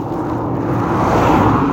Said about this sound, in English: Oh, another car. Act normal. Maybe give a little wave.